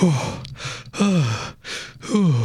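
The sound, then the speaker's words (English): A voice imitates a worn-out hound lying on the road, gasping as if it had run until tired: three heavy, evenly spaced breaths, each a voiced groan sliding downward, separated by breathy inhales, fairly loud with no other sounds. “When he had walked some distance, he found a hound lying on the road, gasping like one who had run till he was tired.”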